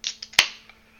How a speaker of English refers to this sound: So without further ado, I'm going to crack open my brew.